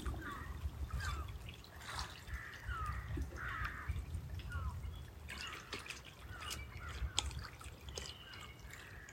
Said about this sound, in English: Eagles singing. And the gulls. The water.